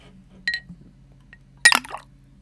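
A bright ringing clink of glass against glass, then a brief pause before a louder clattering splash as a shot drops into a drink, making a Monster Bomb: a Jaeger bomb made with Monster energy drink instead of Red Bull. No talking.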